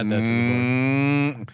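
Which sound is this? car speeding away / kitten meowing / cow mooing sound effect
cow mooing sound effect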